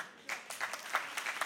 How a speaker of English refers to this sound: See, I know some people are clapping and somebody said yes, and I'm not trying to get you to be hyped, but I need you to know that sometimes we downplay the miracle of making it home at night.